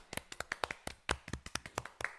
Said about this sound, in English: A round of applause.